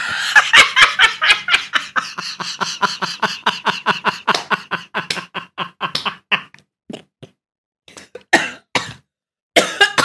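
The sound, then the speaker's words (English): A long, rapid, loud fit of coughing, with quick hacking bursts that slow into scattered, separate coughs toward the end. No talking. “You're giving me cough. You finally giving me cough.”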